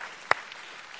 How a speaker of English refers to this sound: Now that's a good time to clap right there.